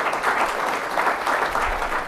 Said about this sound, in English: I think that's something that's worthy of applause. Why don't we give our friend Sean a round of applause and welcome him.